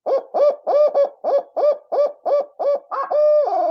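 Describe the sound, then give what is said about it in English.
A loud eight-note owl hoot call blown on a Woodhaven Ninja owl call: a quick rhythmic run of short, evenly spaced hooting notes with little single notes at the end, finishing in a longer, drawn-out hoot that slides downward. No one speaks. “Add a little flair on that one, those little single notes at the end of the 8-note.”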